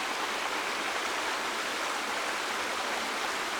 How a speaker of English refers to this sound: And the water's just gently running over the rocks as it moves towards some rhododendron by the old bridge into the tunnel.